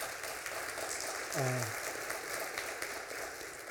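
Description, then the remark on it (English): Steady audience applause for a veteran fills the space, a dense wash of clapping from a sizable crowd, with a brief voiced shout rising out of it midway. “And he doesn't want applause.”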